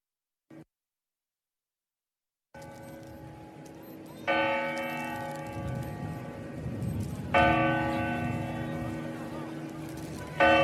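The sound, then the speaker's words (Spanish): Two loud clock bell strikes of the New Year's Eve midnight chimes ring out about three seconds apart, each with a long resonant decay, over a steady hum of crowd noise. “¿En serio han metido anuncios en mitad de las campanadas?”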